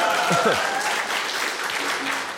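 A crowd claps steadily in a dense wash of applause, with a few brief whoops or cheers rising early on before the clapping continues evenly throughout; a round of applause for a guest who answered two quiz questions correctly.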